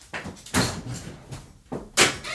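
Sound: front door being opened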